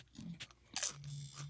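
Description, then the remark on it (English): Wet, crunchy chewing of cold salsa, straight out of the fridge, and chips, with a few sharp bites and mouth smacks in irregular rhythm, fairly quiet, no talking. “Now that we've gotten you through the hump of listening to us eat food”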